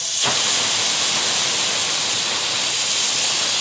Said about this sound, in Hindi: Cooker की सीटी बजने ही वाली है, अभी को उसके बजने का इंतजार है।